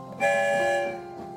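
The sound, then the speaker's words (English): A single train whistle blows as the Story Train leaves the station, a bright sustained harmonic blast that starts sharply, holds for under a second, then fades into a softer tail, with no talking. “One whistle, we're on our way.”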